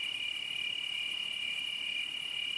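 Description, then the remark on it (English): A steady, continuous chorus of crickets trilling at a high pitch in late summer at a cabin, with a faint hiss of outdoor ambience underneath and no voices. “It's late summer up here at the cabin. We can hear the crickets”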